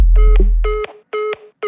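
A phone keypad tone for the number 7 beeps repeatedly, four short, even electronic bursts in a steady rhythm. A deep bass rumble sits under the first one, and no one speaks.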